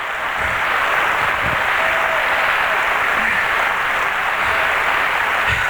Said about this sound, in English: Oh, let's give the Lord a good hand clap tonight. Let's give the Lord a good hand clap.